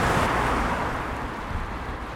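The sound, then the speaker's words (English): Steady roar of road traffic beside a river where people are fishing, a broad continuous rumble of cars passing with no pauses, loud and unbroken throughout. “But it's not just the traffic on the road that the fishermen have to contend with.”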